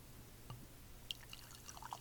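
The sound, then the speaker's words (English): Light gold beer pours faintly from a bottle into a glass, with soft trickling and a few bright drip-like plinks rising in pitch over a low background hum. No one speaks. “And then the pour.”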